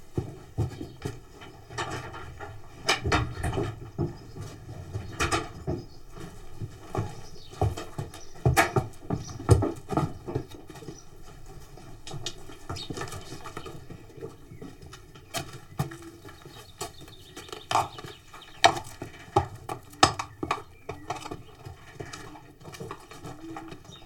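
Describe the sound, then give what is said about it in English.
A horse is tacked up, made ready for a riding lesson with a very young child: irregular hoof clops and shuffles with scattered knocks and rattles, while pigeons coo softly in the background. No one speaks. “That's the sound of a horse being tacked up, made ready for a riding lesson with a very young child.”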